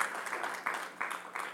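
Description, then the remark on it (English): Audience applause for the youth's skit, a steady wash of many hands clapping at moderate volume, with a few louder bursts rising out of the texture and no voices. “Well, can you just give the youth another hand of applause for their wonderful skit this morning?”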